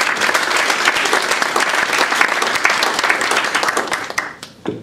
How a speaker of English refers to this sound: These are two real superstars on the committee. So just a round of applause to these two.